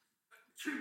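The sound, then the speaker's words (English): A single sneeze: a brief catching breath, then a sudden loud, explosive burst that cuts off the quiet, with no talking around it. “bless you”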